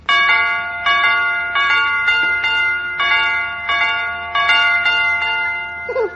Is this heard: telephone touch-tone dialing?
no